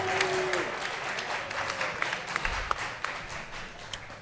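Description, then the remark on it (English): An audience applauds its volunteers steadily for a few seconds, a dense wash of many hands clapping with scattered sharper claps poking through, holding at a fairly even loudness throughout. “All right, let's hear it again for our volunteers.”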